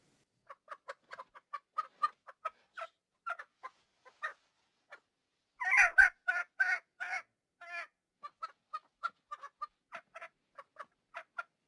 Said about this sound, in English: Keep that damn chicken quiet.